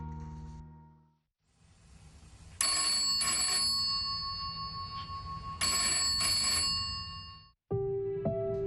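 telephone ringing

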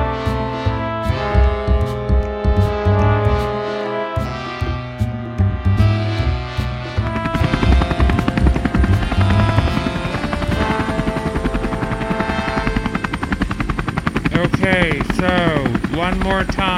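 helicopter rotor sound effect

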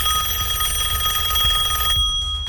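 telephone ringing

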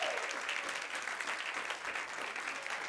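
audience clapping

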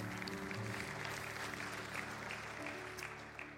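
audience applause

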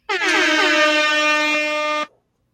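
air horn sound effect

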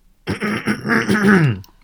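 throat clearing

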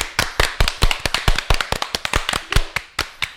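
round of applause

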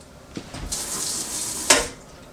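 water boiling

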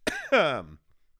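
cough and throat clearing

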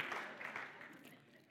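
audience clapping

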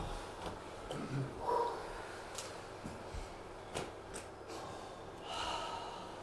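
deep breathing in nose

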